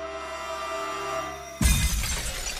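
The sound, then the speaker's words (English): A steady engine-like drone with sustained tones gives way to a sudden loud race car crash, followed by dense, noisy shattering and clattering debris that continues to the end. “This is one of the worst crashes I have ever seen.”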